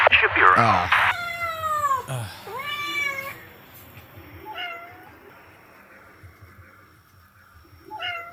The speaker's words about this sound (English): He's torturing a cat. Oh, my God. What is this? I can't control it. What? No, just unplug it. Turn this just off? Unplug it. Just here, I'll unplug it. I did. Oh my God, it's still playing. It's still going.